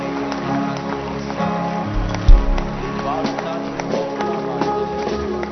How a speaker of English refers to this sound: Clap your hands.